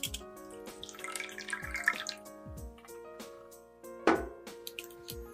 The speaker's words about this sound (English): Step 4. Put the pudding cups into a container. Pour in about 2 centimeters of warm water and bake in an oven at 155 Celsius for 15 minutes.